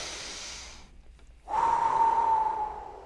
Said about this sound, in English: I have to take a deep breath every time I want to open Twitter, so give me a second